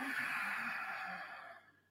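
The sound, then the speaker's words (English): A slow, steady exhale through the nose after a deep breath is held, as part of controlled breathing, soft, a breathy hiss that gradually trails off over about two seconds, with no talking. “And then you slowly release through your nose.”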